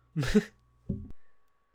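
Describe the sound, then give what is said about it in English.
A single sharp, breathy cough bursts out, followed a moment later by a shorter, lower throat-clearing grunt that trails off into quiet. “That was a cough, but...”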